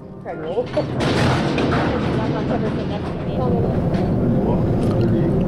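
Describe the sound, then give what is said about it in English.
A doorless mine elevator cage with a metal gate and no lights, descending at about 2,000 feet per minute toward Snow Lab, 6,800 feet below ground: a loud, steady rattling roar with heavy low rumble and scattered metallic clanks, with muffled voices briefly audible near the start. “As we're descending, the rock face is flashing by us. We're dropping at a speed of about 2,000 feet per minute.”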